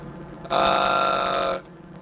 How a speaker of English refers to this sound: I'm all very phlegmy, very nasally right now, so I'm trying to, clear the throat a little. So excuse me, problems of not having both a mute button or a co-host.